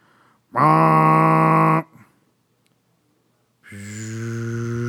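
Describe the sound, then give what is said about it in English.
Two loud, low, droning blasts from a boat horn in fog, sounded with the engine cut while listening for the Bangor packet; the first lasts over a second and the second starts after a short silence and holds steady until the end. “Give a blast of the horn,”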